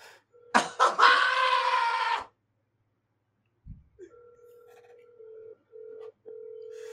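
A phone call placed on speaker, live on air: a loud, brief burst of sound, a pause, then a steady electronic ringback tone that pulses on and off with short gaps. No one speaks.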